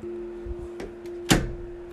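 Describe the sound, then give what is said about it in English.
A bedroom door swings shut with one solid thud, preceded by a faint bump, over a steady low electrical hum from a running fan. “heading over to my room. I'm closing the door.”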